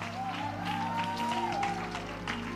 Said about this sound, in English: Give him one more hand clap and a shout in this house. What a great God.